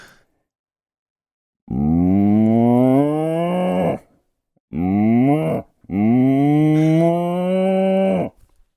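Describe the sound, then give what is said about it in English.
A human voice imitates a regular cow, giving three drawn-out, throaty moos: a long one, a short one, then another long one, loud with brief pauses between. “Okay, I'm going to do my do my regular cow.”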